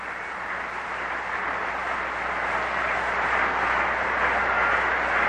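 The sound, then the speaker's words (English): A steady, dense clatter of kids banging bats on the movable metal stands at D.C. Stadium during a baseball game blends into a continuous roar of crowd noise, holding at an even, fairly loud level with no talking. “You hear the kids banging those bats on the metal stands here in D.C. Stadium.”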